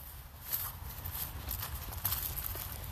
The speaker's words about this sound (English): Listeners, I don't know if you can tell, but I am currently low-key chasing the dog around the yard. Right now we're only at walking pace, but I suspect things will get quicker.